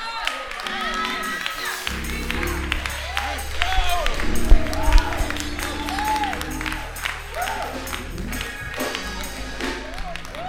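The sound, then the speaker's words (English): A church audience shouts and applauds together, a steady wash of clapping under many overlapping excited voices, with a sustained low tone rumbling beneath from about two seconds on. “Didn't I tell you when it comes time for shouting, y'all ought to help them shout?”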